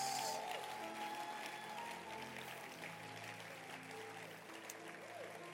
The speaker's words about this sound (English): Thank you so much. And God bless you. Thank you for the time. Can you clap your hands?